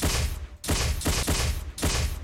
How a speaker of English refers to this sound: And then the sounds of small arms fire tinking off the shell of your car.